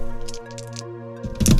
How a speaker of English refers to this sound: Okay, so roll those 3 more die.